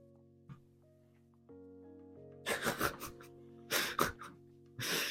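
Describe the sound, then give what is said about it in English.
A dog sniffs at a wall in quick clustered bursts of short, breathy snuffles, three rounds, over a steady, soft tonal background hum. “Your mind is no more telling you about yourself than this dog sniffing the wall.”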